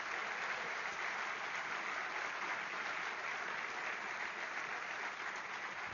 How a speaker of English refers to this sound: if you were in any part of Impact, whether you're a student that worked Impact, someone who volunteered, host home, driver, all that stuff, why don't you go ahead and stand for us? Go ahead and stand. Why don't you give them a big round of applause?